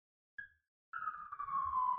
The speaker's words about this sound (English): Sirens.